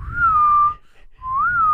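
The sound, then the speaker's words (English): A two-part family call-and-response whistle used to find each other: a clear, steady whistled note that dips slightly, a brief pause, then an answering whistle that rises and falls, fairly loud over low background rumble. “We did a family whistle. Okay. To find each other. It was a call and response like we're coyotes.”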